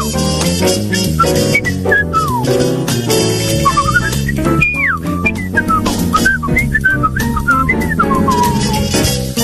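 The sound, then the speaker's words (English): A lively whistled melody glides and swoops over a full jazz band backing, loud, with bright bending notes weaving through steady accompaniment and no talking. “jazz whistling there. Nobody whistles anymore.”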